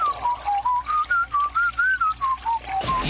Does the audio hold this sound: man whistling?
yes